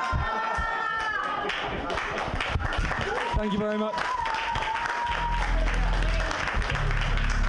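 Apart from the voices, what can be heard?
audience clapping and cheering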